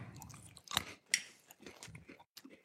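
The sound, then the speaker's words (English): Wet chewing of Flavor Blasted Extra Cheddar Goldfish crackers with lip smacks and a couple of sharp crunchy bites, irregular mouth noises continuing for a few seconds with no talking. “all this chewing and lip smacking is bringing back his PTSD from the Camacho beef jerky episode.”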